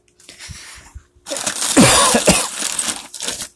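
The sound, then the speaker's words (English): A person coughs after eating an apple, starting with a few softer, muffled hacks before breaking into louder, harsher, raspy coughing fits that trail off near the end. “Now I'm coughing.”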